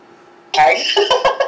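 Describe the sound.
A sudden, loud sneeze bursts out of near silence, followed by a few shorter, breathy voiced catches trailing off over the next second.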